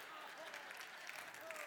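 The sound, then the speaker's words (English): An audience applauding: a steady, dense patter of many hands clapping at once, holding an even level throughout with no pauses and no clear talking over it. “Now, there's no reason for you ladies to applaud that.”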